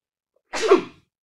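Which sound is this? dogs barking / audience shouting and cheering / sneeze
sneeze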